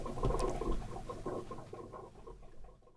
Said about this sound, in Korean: 뭐가 꿀꺽꿀꺽 에어컨이 물을 마시는데 갑자기 에어컨이 목이 말랐나 봐요.